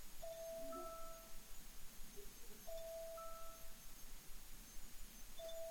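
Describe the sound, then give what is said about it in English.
An electronic alarm sounds in a steady repeating pattern, a sustained mid-pitched two-note tone returning about every two and a half seconds over a low background hiss, with no one speaking. “We got some alarm going here.”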